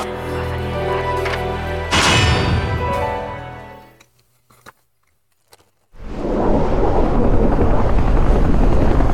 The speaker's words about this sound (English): So we're on the helicopter, going through the storm, at night, toward the island.